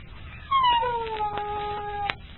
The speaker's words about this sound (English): Hear him? There's that coyote again. He sings each night from the shadow of the barns. Some nights, when the echo is clear, it sounds just like a duet.